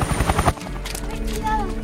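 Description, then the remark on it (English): A helicopter rotor chops in fast, rhythmic thumps at first, then settles into a loud, steady engine drone, with a muffled voice faintly underneath. “Pinball, this is Chopper 3. Prepare for extraction.”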